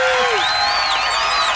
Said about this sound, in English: Now we need the big applause, Kevin. There it is.